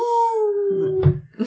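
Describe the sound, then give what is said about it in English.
A single wolf howl holds a steady, slowly sinking tone for about a second, then breaks off into a couple of short, rough noises. “That's no, a that's wolf.”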